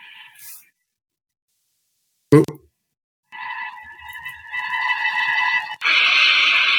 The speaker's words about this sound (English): And we have a monster roar.